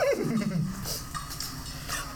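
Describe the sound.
A horse whinnies once, a descending neigh that sweeps downward in pitch and fades within a second, followed by a low, steady background rumble.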